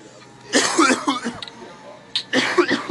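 Two harsh bouts of coughing from a rapper over a beat, each a rough burst that trails off, separated by a short quiet pause, with no talking.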